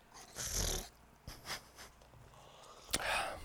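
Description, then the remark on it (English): Wet, sputtering slurps as someone sucks a strong shot out of a cup right at the microphone: a long gurgling draw, a few shorter sucking bursts, then a sharp final slurp. No one speaks. “I want you to know that I took the shot like hella close to the mic, so you're going to hear a lot of fart-sounding slurpy noises.”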